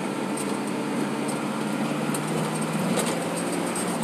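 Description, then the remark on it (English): A steady, continuous engine drone with a low hum and broad road-like rumble, holding an even level throughout, from inside a big white work truck as it drives in the rain. “in the big white work truck.”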